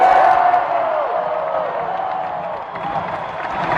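A large stadium crowd cheers and applauds in a steady, loud roar that holds for the whole stretch, with a brief whistle rising above the noise near the start.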